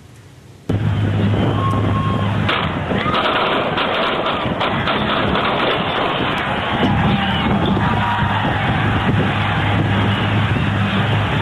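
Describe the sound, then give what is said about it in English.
A moment of silence breaks into a loud, continuous roar of crowd noise, with rapid sharp cracks of gunshots punctuating the chaos as people scatter and shout throughout. “I just want to play it from the top so that everyone can hear the silence and then hear the gunshots.”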